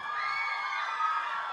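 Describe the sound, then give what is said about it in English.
A large crowd cheers and applauds the film's cast and crew and its director Wes Ball in a loud, steady roar, with high-pitched shouts and whoops carrying over continuous clapping for the whole moment. No one speaks. “Keep the applause going.”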